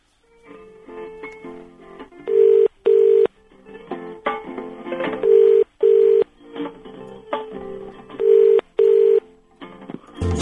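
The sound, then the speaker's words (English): A telephone being redialed after a caller's line dropped during a live LBC radio call-in: loud, steady electronic tones come in short paired bursts, repeating every few seconds over a busy background of other sound, with no one speaking. “And the phone has gone down. I'm gonna. Well, no, hang on. I'm gonna. This is too good to waste.”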